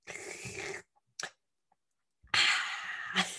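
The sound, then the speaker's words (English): A voice imitates how their dad drinks coffee with loud slurping: a long, noisy, airy slurp, a quick short suck, a pause, then a second louder slurp ending in a sharp gulp-like burst. “My dad drinks coffee like this.”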